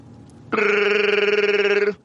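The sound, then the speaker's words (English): A person imitates a Wookiee with a single loud, sustained growling roar, about a second and a half long, rumbling and warbling with a rough, throaty vibrato before cutting off abruptly. “Oh, you speak woo shrieky or whatever it is.”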